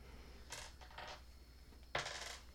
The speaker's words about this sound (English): Hold up. You need a D4. Yeah, I forgot my dice at home. All right, hold up. I'll give you my good dice. I don't think I need them. Here. There we go. Roll a D4.